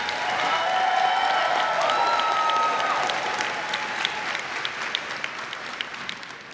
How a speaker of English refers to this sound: So a huge round of applause for her.